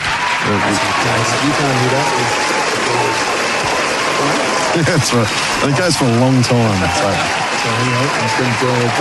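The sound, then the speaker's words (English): Steady, dense applause from an audience welcoming a special guest, the owner of Cafe Palais in Breakwater, a continuous crackling wash of many hands clapping throughout, with people talking loudly over it. “So, but we've stopped the applause, what are you pointing at?”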